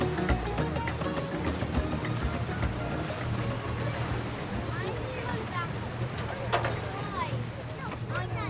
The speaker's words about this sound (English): Finally, the last ferry boat comes over.